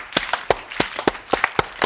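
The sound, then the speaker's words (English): A group claps slowly and a little unevenly, sharp hand claps landing in a loose rhythm that gradually quickens, with no voices over them. “Why are you slow clapping? Why are you all slow clapping?”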